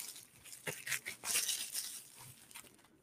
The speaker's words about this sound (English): Bubble wrap. I am that person that's gonna play with a bubble wrap more than anything else.